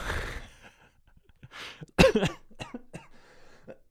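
A loud cough bursts right into the microphone, with a couple of smaller throat-clearing sounds and breaths around it, no talking.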